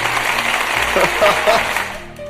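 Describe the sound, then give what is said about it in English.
A brief burst of clapping, a dense, steady patter of hands that fills the short clip at moderate loudness, with faint voice-like tones mixed in before it fades at the end. “All right, we'll clap you out.”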